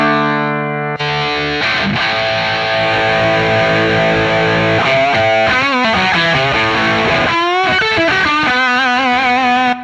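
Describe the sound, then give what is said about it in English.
A heavily distorted electric guitar played through an MXR EVH gain pedal plays loud, saturated sustained chords, then bends and slides into wavering lead notes, thick with no talking over it. “Oh, and one gain pedal that is a really great secret weapon is the EVH by MXR.”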